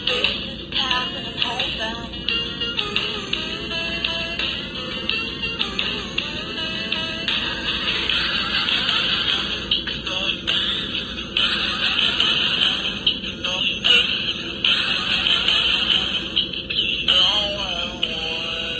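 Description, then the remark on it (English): A Hit Clips toy music player with a dead battery, its postage-stamp-sized clip playing a fragment of a hit song, warbles through a slowed, wavering song fragment, thin and trebly with a buzzy, distorted edge, droning on steadily for about nineteen seconds. “And here's what it sounds like on a hit clip where the battery's done.”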